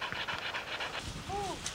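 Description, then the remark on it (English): A big hunting dog pants in quick, steady breaths, with a brief high whine near the end over a faint outdoor background. “Hi, big dog.”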